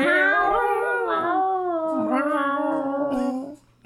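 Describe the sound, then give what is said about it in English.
A loud, drawn-out caterwauling yowl rises and falls in wavering pitch for several seconds, alone, then breaks off abruptly. “Sound like a fucking cat next door.”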